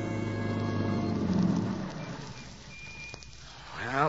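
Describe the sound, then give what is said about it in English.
A car engine hums steadily as it drives up to a boarding house in the early evening, then winds down and goes quiet, leaving a soft hiss before a voice begins to speak at the very end. “Tom Stevens and Helen Benson drive up to the boarding house after their picnic”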